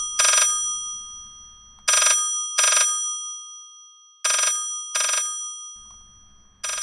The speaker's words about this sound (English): The phone rang.